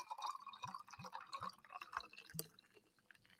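Fever-Tree ginger beer is poured into a copper mug holding vodka and lime juice for a Moscow Mule, with a steady fizzy splash broken by several rhythmic glugs, then a brief clink near the end as the pour tapers off.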